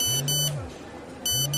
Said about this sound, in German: Hey, du hast Post. Muss dein Handy sein. Klingt nach einer SMS.